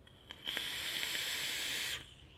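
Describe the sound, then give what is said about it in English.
A single steady hiss of someone drawing on a Sith V2 e-cigarette atomizer from Silver Wolf Customs, lasting about a second and a half, with faint crackling and a soft click just before it starts. “So I'm gonna put you to the side and I'm gonna vape right now on the only thing that has succeeded this entire first impressions, and that's the Sith V2 from Silver Wolf Customs.”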